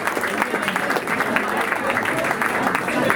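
An audience at a poetry open mic night breaks into sustained applause to welcome a poet, a dense, steady wash of many hands clapping at once with a few louder individual claps standing out, holding strong for the full few seconds.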